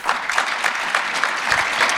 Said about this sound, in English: That clap is nice. Maybe we should just end there.